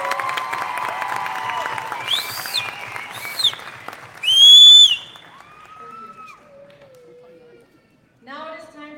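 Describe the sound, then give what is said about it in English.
A crowd claps and cheers for NHS members, with several sharp whistles rising above the applause, the loudest near the middle, before the clapping thins out and fades to a few scattered calls. “Please give them a big round of applause.”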